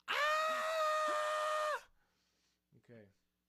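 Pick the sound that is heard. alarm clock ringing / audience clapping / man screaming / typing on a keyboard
man screaming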